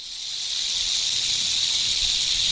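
A steady, sustained snake hiss fills the whole stretch, a bright airy noise that holds at an even loudness without pause, close and fairly loud, with no voices.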